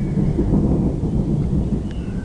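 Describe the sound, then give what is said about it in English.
A deep, continuous rumble of thunder from a thunderstorm rolls on steadily, loud and low, with a faint hiss of rain underneath and no voices. “Is just rolling all around, which makes you think that any minute now we're going to have a monumental explosion above our heads.”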